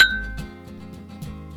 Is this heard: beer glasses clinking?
yes